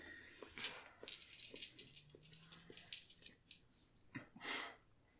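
Rapid, irregular clicking of keys on a computer keyboard as someone types the command "unlock safe", a quiet run of light taps and a few heavier strokes, with no voices.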